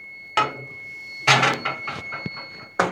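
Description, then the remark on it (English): A dishwasher's high electronic tone holds steadily through the whole stretch, while a few sharp clattering knocks, like dishes bumping, break in loudly over it. “That beeping? It was the dishwasher.”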